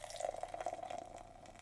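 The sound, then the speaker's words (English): Cali Creamin' vanilla cream ale (5.0% alcohol) poured from a freshly popped can into a glass, a steady splashing stream with a bright gurgling ring and fizzing foam, fairly loud, with no talking; golden ale forming an extremely foamy off-white head. “So, I'm going to pop my top. Top. Nice. Foamy. Frothy. And the pour.”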